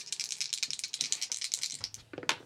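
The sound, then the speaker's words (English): Dice clatter in a fast, steady rattle of bright clicks for about two seconds as they are rolled during a D&D game, ending in a sharper burst as they are let go. No one speaks. “That was a wrong die.”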